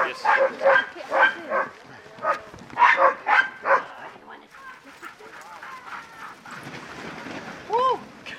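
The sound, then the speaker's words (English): A pack of husky sled dogs barks in quick, excited bursts, loud at first, then thins into a busy rushing sound of movement with a few scattered yips as they pull the sled away, wagging their tails. “Here they come. Here come the dogs. Pulling away, wagging their tails.”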